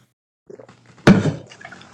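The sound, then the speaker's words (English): A light rustle of something being picked up, then a sharp clunk followed by a short gush of water being poured as someone grabs a drink, with no one speaking. “I'm not getting emotional, I'm just thirsty. I'm gonna grab water.”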